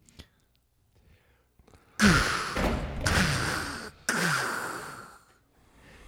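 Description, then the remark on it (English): Three loud, heavy knocks from a door knocker on the door of a manor, about a second apart. Each strike rings out with a reverberant tail. Before them there is near silence with a few faint small sounds. “I'd say knock on it, Duroc. Some nice knockers here.”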